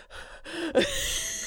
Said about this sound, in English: Just trying to induce a yawn.